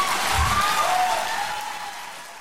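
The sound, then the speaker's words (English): Steady applause from a sizable audience after a speech by Michelle Williams urging women to vote, dense and continuous clapping with a few scattered cheers, fading slightly toward the end. “The first thing I want to point out is just the applause that Michelle Williams gets when she says that she exercised the right to choose.”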